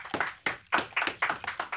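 People clap in a steady, moderately loud rhythm, roughly seven or eight sharp, slightly overlapping hand claps with no voices over them.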